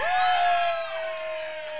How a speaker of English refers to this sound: And the crowd goes wild.